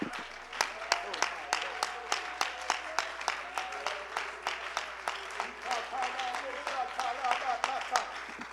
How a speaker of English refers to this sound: Well, let's clap our hands and praise him together.